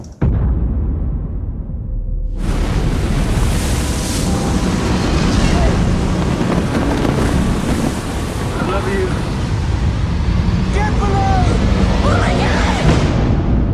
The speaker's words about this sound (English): But then they hit a mother of a storm, a Category 5 hurricane.